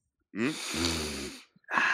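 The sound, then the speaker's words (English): A person sniffs markers: a long, loud nasal sniff with a rough, snorting edge, partly voiced and hum-like in the middle, followed after a brief pause by another short sniff. “I'm sniffing markers.”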